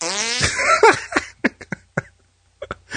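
A voice imitates a fart: a drawn-out buzzy blast with a falling pitch, then a string of short sputtering pops and spurts in uneven bursts, fairly loud with brief gaps between.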